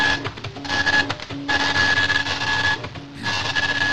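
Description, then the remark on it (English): An old printer whirs and grinds through a page, with a steady mechanical drone, a high whine, and repeated bursts of rasping, stuttering print-head movement that pause briefly between passes. “I got an old printer.”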